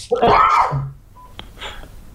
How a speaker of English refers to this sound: Bless you.